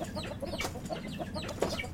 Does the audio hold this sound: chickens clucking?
yes